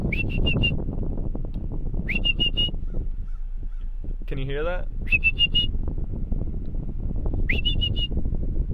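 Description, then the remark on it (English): A person whistles short bursts of high notes, and a single hoarse, wavering crow call answers once between them from a crow right next to the person's car. Low engine-like rumble fills the background, with brief speech. “I'm sure you hear me whistling, but that, there's a crow right next to my car whistling, or barking back at me.”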